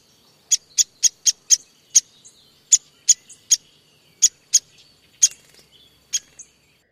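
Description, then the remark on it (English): A series of about a dozen sharp, high-pitched pik calls from a downy woodpecker, short and clipped, coming at slightly irregular intervals against an otherwise quiet background. “Let's do the same thing for the pink calls. First, Downy Woodpecker.”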